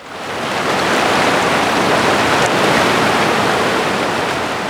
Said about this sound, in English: On that night, I walked down to the river on the edge of campus, seeking complete solitude. I've always been drawn to the sounds of water, whether they be from environmental spaces, from a raining showerhead, or even running through pipes.